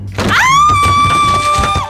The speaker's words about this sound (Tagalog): Uy, ingat! Bumubukas ang pinto sa likod mo.